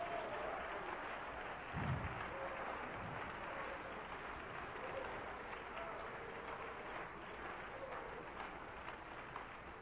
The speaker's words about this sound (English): Come on, let's stand up and clap our hands and praise the Lord together.